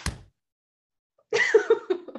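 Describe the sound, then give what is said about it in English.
A single loud, sharp hand clap, hard enough to shake the desk, with a heavy low thump, then a second of silence before a voice breaks into laughter-like vocal sounds. “And that was such an aggressive clap.”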